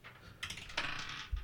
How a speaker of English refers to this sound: Oh, nice. It's a crisp dice sound. 20.